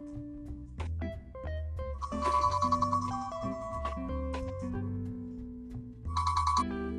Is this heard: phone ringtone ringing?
yes